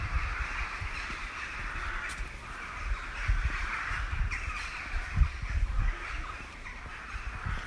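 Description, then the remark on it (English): A large flock of crows caws continuously over a graveyard in the UK, a dense overlapping chorus of harsh calls, with a low rumbling background like wind or traffic and no talking. “God, that giant flock of birds.”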